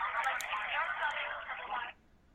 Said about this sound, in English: No, I was getting a pen and the phone was cutting out.